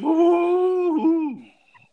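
A dog gives one long, steady howl that dips briefly in pitch midway, then trails off into a soft whimpering fade. It is close and fairly loud, with no talking.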